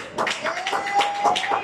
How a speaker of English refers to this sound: Let's put our hands together for love. We love you so much.